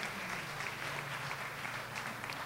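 A crowd applauds steadily, many hands clapping in a dense, continuous patter that stays fairly even in loudness throughout, heard from within the room with a low hum underneath.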